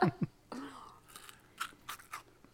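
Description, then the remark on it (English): Someone crunching a hard candy ball, a handful of sharp, brittle cracks scattered irregularly over a couple of seconds, fairly quiet and with no talking. “I know, that was me crunching my ball.”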